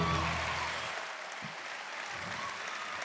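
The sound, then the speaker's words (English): An audience applauds the Sad Libs segment in a dense, steady wash of clapping that eases slightly after the first moment and then holds for about three seconds, with no voices above it. “Do not applaud for Sad Libs.”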